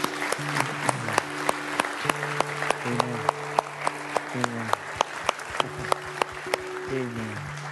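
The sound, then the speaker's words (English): A church audience claps steadily to applaud the salvation of the Lord, dense overlapping applause with sharp hand claps throughout, while sustained organ-like tones shift underneath and a few voices murmur. “Would you applaud the salvation of the Lord?”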